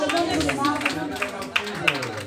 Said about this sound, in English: Somebody clap your hands and say, in the name of Jesus.